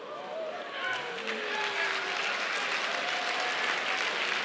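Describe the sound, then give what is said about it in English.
An audience breaks into steady, loud applause with scattered cheers and whoops rising over the clapping, building within the first second and sustaining as a dense wash of sound, cheering a building design rendering shown during a presentation. “Yeah, I'm about to talk bad about it, and y'all are cheering it.”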